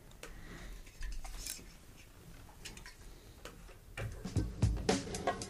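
Sharp metallic clicks and ticks build to a louder crack and short fizzing hiss as a beer can is opened, with no voices.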